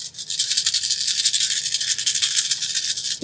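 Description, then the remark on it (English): A handful of 11 dice rattle and clatter continuously for about three seconds, a bright, dense, steady jostling with no one speaking. “Another 11 dice.”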